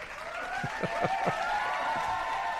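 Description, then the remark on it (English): A few family members clap briefly: four quick, evenly spaced claps followed by a couple of softer ones, set against a steady humming background with no talking. “that's the family clapping.”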